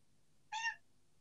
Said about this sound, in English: That cat meow was perfectly timed. Cat loves it. All about it. Cat's all about it.